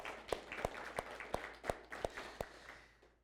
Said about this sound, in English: And so let's just give God a round of applause for that as well.